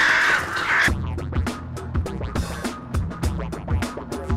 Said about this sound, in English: The birds! The birds! The birds! The birds! Open the doors! Open the doors! Oh, those accursed birds! The birds!